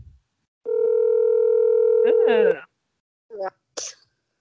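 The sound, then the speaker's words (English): A steady telephone dial tone hums clearly for about two seconds while someone phones a friend, then cuts off, followed by a couple of short, sharp noisy bursts. “Finet decided to phone a friend. She's going to be like, again. Give us 1 second. I want to call her.”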